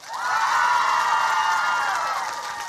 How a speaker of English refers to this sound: Now you got to cheer. Cheer. Now you got to clap your hands and cheer at the same time. Go.